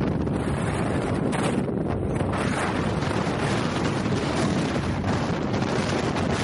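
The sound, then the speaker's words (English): Strong, freezing, gusting wind buffets the microphone during a hike straight up a hillside, a steady roaring rush with thick low rumble and gusty swells rising and falling throughout, loud with no voices. “I should probably like cut in like some of the audio that I have just from the sound of the wind.”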